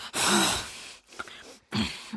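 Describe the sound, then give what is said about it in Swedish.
A voice imitates heavy, loud breathing: a long, forceful breath followed by a quieter one and then another strong rasping exhale, noisy. “Folk som andas högt.”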